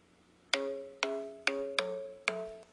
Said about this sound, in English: I'm trying to turn this down, but it keeps ringing. I don't know. I have it all the way down.